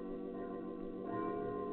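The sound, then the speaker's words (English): A bell on a little chapel on Molokai, placed there by hand, rings with a deep, sustained resonant hum, a fresh strike swelling in about halfway through as the tone rings on, moderately loud with no voices. “And the bell he placed with his own hands on the little chapel echoed around the world.”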